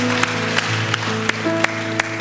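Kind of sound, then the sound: crowd, church audience applause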